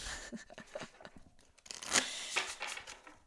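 Crisp papery riffling and flicking of a deck of tarot cards being shuffled, a steady run of dry rustles with a couple of sharper snaps, no voices.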